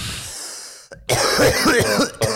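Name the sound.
coughing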